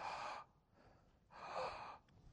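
Two long, forceful inhaled breaths, each about half a second, separated by a brief pause; airy and deliberately exaggerated, with no talking, demonstrating how the syllable 'Yah' of the name Yahweh can sound like breathing in.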